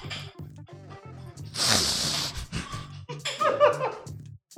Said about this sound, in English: I think you just snorted towards the...